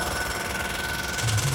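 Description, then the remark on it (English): A jackhammer pounds right outside a door in a steady, rapid rattle, loud and continuous throughout the short stretch with a harsh, gritty edge and no voices over it. “I'll use this jackhammer right outside your door.”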